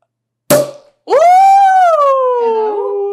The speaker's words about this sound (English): you can hear it pop because champagne pops.